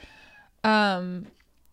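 A kitten meows: a faint, thin mew first, then one loud, drawn-out meow that holds steady for about half a second before fading.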